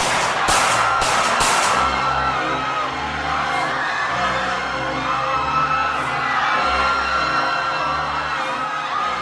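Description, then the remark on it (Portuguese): Several sharp pistol shots crack in quick succession at the start over a loud, dense crowd that keeps shouting and yelling throughout, as Gavrilo Princip steps out into the crowd and fires a pistol, killing Archduke Franz Ferdinand and his wife Sophie. “De repente, o Gravilovich sai, entra no meio da multidão, dá dois passos à frente, tira uma pistola e atira.”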